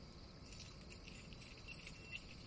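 Metallic jangling of keys on a ring as someone goes through many keys to open a church door near midnight, a soft continuous clinking with a few brighter chinks, fairly quiet, with no one talking.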